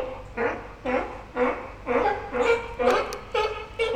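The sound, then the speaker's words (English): A sea lion gives a steady string of about eight harsh, honking alarm barks, evenly spaced roughly twice a second, moderately loud, with no talking over them; the sea lions are alarmed. “It's the alarm call, yeah?”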